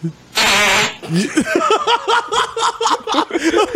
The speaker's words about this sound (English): The greatest fart video ever.